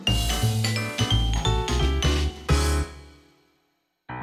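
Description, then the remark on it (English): Coffee cups clink together several times in quick succession in a kitchen, each strike leaving a bright, ringing tone that overlaps the next before fading into silence; a short knock follows at the end. “Coffee cup clink. Coffee cup clink. Coffee cup clink.”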